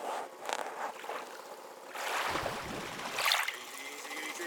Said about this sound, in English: Okay. Where's the winch? Yes, the winch.